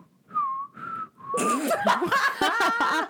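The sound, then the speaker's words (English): A person whistles a short three-note tune, clear, then bursts into laughter as others join in with giggles and chatter. “All I can hear when I think of whistle is the Hunger Games.”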